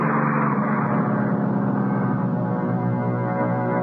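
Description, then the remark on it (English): A large vehicle's engine rumbles loudly, a steady low droning growl that holds for several seconds as a number 107 bus pulls away from a covered bus stop under clouding skies, with no voices. “It was a 107. No good for me. When it pulled away, I was all alone at the bus stop.”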